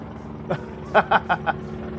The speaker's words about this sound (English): The helicopter. We literally have the helicopter flying over us. This might be a while.